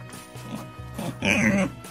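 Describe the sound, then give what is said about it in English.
A Patagonian mara makes a few low, rough grunts, then lets out a louder, higher-pitched squeal lasting about half a second, with no talking. “They grunt when they try to threaten, and also they squeal like guinea pigs.”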